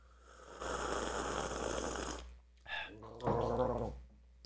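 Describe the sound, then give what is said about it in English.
A long, airy slurp of someone sipping hot coffee, followed by a couple of short voiced hums of approval. “Let's sip the coffee and tell us what you think.”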